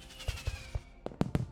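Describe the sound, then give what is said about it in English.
Fireworks going off above a lake as a Bohemian Club midsummer ceremony closes: a few soft, dull thumps, then three sharper, crackling bangs in quick succession over a faint steady hiss, with no voices. “And fireworks erupt, lighting up the sky above the lake.”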